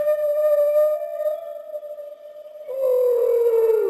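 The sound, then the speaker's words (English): Whale song: a long, steady moaning tone rich in overtones, then a second mournful note that slowly slides downward. Fairly loud and heard alone, with no voices. “They had a hit whale song number one with the single...”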